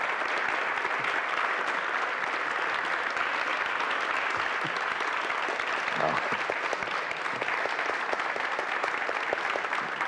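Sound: audience clapping and cheering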